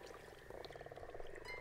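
A frog croaks at a pond in autumn in a steady, rapid run of pulsing calls, moderately loud, with soft outdoor background hum and no voices.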